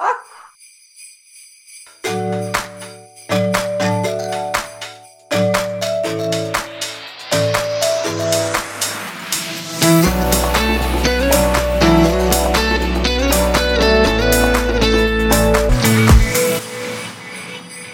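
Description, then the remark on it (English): A festive Christmas musical jingle made as sleigh bell special effects, with bright, rapidly shaking sleigh bells over bold chords, which build into a fuller, louder passage with a deep bass line midway through. “We hope you like this sleigh bell special effects.”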